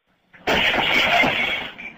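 Glass shatters with a sudden loud crash, followed by a bright, sustained spray of tinkling shards that fades slightly over about a second and a half.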